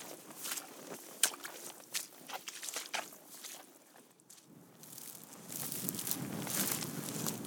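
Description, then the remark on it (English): Footsteps crunching steadily uphill on a rocky mountain ridge toward Cap Bells, a regular rhythm of scuffing, gritty steps with loose stones shifting underfoot and a faint rush of wind. “and we're going to disrupt this conversation and go a little bit further up the ridge.”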